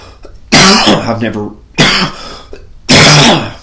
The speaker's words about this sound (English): I'm still recovering from the sickness from going to the creator show. How appropriate that I'm still coughing during the creator promo video, audio, I mean, but upper respiratory infection.